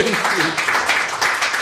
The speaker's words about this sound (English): So a big round of applause to our guests.